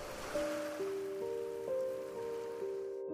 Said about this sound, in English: Maybe for you it's gardening, turning off your phone when you're eating, cuddling with your dog on your couch, or just taking a small break to listen to the rain.